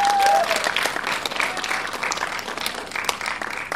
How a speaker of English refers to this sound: So big round of applause for Redbox.